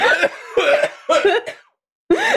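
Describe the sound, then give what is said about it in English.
A person coughs in several loud, harsh bursts into the mic, three quick hacking coughs, a short gap, then one more forceful cough. “Is it activated by coughing?”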